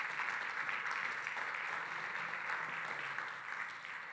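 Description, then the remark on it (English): Steady applause from an audience for Pastor Deke, a dense, even patter of many hands clapping at once, holding level and easing slightly toward the end. “And let's give Deke one more round of applause.”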